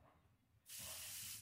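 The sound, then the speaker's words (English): A single sustained spray from a pump-style olive oil mister, a bright steady hiss lasting under a second after a brief quiet moment, then cutting off abruptly. No talking. “So he has olive oil. The spray version, though.”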